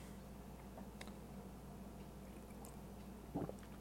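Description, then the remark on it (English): A quiet, low background hum with a few faint ticks, then one short, soft wet slurp of a drink near the end. No one speaks. “I didn't slurp that loud.”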